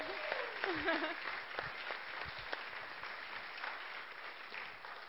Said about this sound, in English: Let's give them one more round of applause as they...